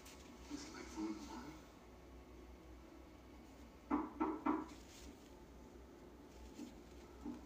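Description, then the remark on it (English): Three quick, evenly spaced, firm knocks on a door in a movie sound out midway, over a low background hum with faint muffled voices. “15 minutes in the movie, and there's knocking. I wouldn't have opened the door.”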